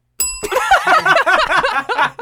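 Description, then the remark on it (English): A single bright bell ding rings out at the start, cut short almost immediately as voices break into laughter and chatter that carry on to the end. “That's how you get a bell.”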